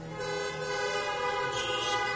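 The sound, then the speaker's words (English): Several car horns honk at once from people sitting in their cars at a church service, in a sustained, overlapping blare, a thick chord of steady tones holding at even loudness throughout with no talking over it. “So if you are sitting in your car and you made the next step and you're filled with the Holy Spirit, blow your horn.”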